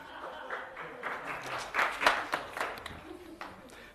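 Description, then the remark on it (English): A crowd applauds with dense, overlapping claps that swell to a peak midway and then taper off, with some faint voices mixed in. “Big round of applause.”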